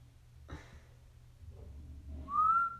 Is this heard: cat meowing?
no